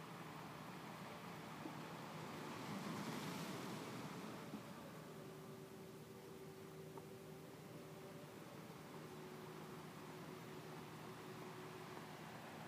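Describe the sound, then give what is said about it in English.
Ocean waves wash against a sandy shore in a steady hiss, one larger wave swelling and breaking early on, with a soft sustained drone humming beneath and no voices. “Feeling yourself standing in the sand, watching that water crash around you.”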